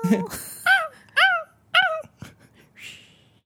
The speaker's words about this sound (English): There's a dog on the beach.